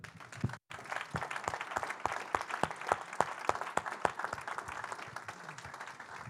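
An audience at a ministry gathering applauds steadily, many hands clapping into a dense, continuous wash with a few sharper individual claps standing out, after a brief silence near the start.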